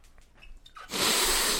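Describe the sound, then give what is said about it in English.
A single sharp, drawn-out sniff, loud and breathy, as someone smells a drink in the ninth cup of a flavor tasting after a brief quiet moment. “Can you hear me sniffing it?”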